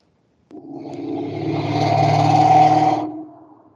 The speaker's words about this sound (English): Is that a UFO? Well, you know, that was somebody down on the main road with no exhaust pipe, apparently.